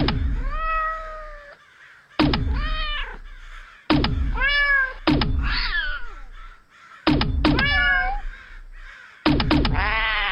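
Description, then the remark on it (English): Six loud cat meows and yowls in quick succession as cats are fired from a cat launcher at crows, each one kicked off by a sharp thump, with brief gaps between the bursts and no talking. “It's not a gun. It's a cat launcher!”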